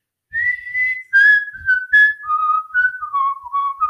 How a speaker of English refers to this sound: And I mean, the most famous whistle song is that.